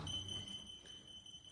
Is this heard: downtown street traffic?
no